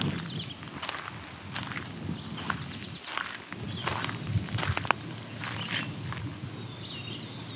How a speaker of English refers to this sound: There's a yellow warbler. There's a yellow warbler. Sweet, sweet, sweet, and sweet song.